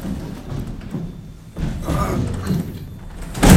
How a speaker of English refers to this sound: We're about to get in this huge industrial lift. Green, giant, green, and we're going to go down. It has these massive metal doors. How do I close this? You just really got to put it.